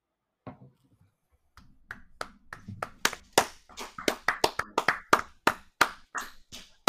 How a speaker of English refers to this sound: I sit here clapping in my Oilers jersey.